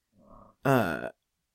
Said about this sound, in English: what was that noise? That's my chair. Listen. Okay. Wait, I'll try it. Well, I can't redo it. You can kind of hear my chair is squeaky.